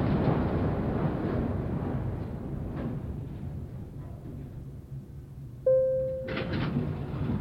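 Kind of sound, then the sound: machine, elevator doors sliding open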